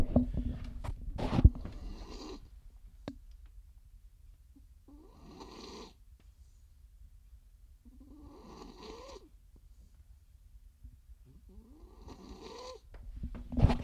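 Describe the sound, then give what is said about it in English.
A dog named Sally, sick with back and disc issues, snores softly in a slow, steady rhythm, four raspy breaths spaced a few seconds apart, after a brief handling noise at the start. “Let me see if I can hear her snoring.”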